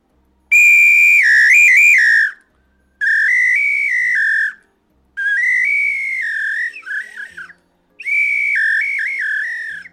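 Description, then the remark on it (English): A samba whistle blown loud in four long, shrill blasts, each with a warbling, trilled pitch and short pauses between them. No voices are heard. “It's like a samba whistle.”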